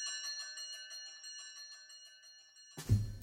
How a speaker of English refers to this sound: And as you can hear from the division bell ringing in the background, Jeremy Hunt has gone off to vote.